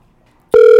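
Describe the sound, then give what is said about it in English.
A telephone ringing tone starts abruptly after a brief near-silence, a loud steady electronic hum with a mid-pitched drone and bright overtones, holding unbroken to the end with no voices. “All right, I'm going to call him now.”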